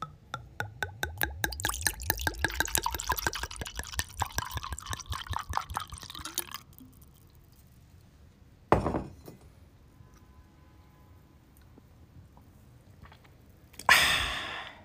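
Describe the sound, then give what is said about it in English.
Liquid glugs rhythmically into a glass for several seconds, fairly loud, rising in pitch as it fills; a sharp clink of a toast to Watford's win over Middlesbrough on Vic 100 night follows after a pause, then a breathy rush near the end. “That is a toast to success on Vic 100 night.”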